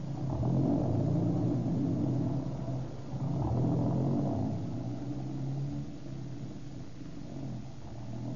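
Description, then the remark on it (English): A car engine rumbles steadily, a low continuous drone that swells slightly a couple of times, with no voices over it. “We got a car and an arsenal.”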